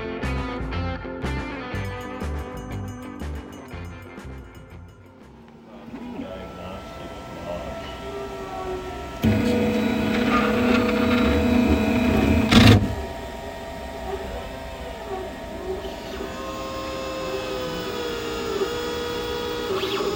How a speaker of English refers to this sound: So this is the laser cutter? What's it cutting right now? Acrylic. But it's cutting a box. Nice. One side of the box. Nice. The sounds you're hearing are some of the many tools, machines, and work that happens in the Central Library's new